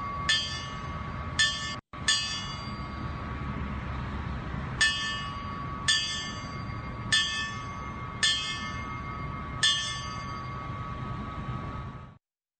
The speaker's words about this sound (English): But here's a little bit of the bells that always gives me chills on every 9/11 anniversary.